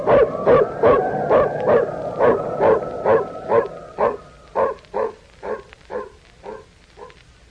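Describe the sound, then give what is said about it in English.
A female dog barks in a steady, rapid series of about fourteen short yaps, with a thin whimpering whine threaded through the first half; the barks grow a little softer toward the end. She is the dog that found people out in the cold. “And don't forget the pooch. She's the one that found us.”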